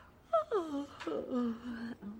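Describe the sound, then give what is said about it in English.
A drawn-out, theatrical yawn voiced aloud, its pitch sliding downward in a couple of long moaning swoops, fairly quiet, with no other sounds around it. “Okay, first I start to yawn a little.”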